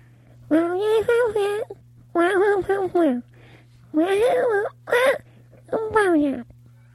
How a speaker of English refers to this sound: I think the cat's trying to tell you Happy New Year.